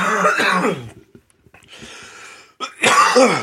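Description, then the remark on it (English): A person coughs and clears their throat, with a few harsh, raspy bursts separated by a quieter, breathy pause. “Man, I'm coughing tonight.”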